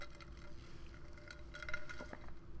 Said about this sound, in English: I do have an iced coffee. I'm going to take a sip. Everybody take your sip.